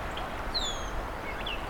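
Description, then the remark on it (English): A gray catbird gives two short, slurred calls, the first longer and clearer, the second brief and thinner, heard over a steady wash of outdoor background noise. “It's a great catbird.”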